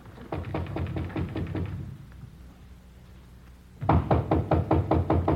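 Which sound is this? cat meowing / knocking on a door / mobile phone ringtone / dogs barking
knocking on a door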